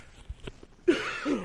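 A few soft, dull thumps of a microphone being handled, followed by a loud, rough cough that trails into a second raspy burst.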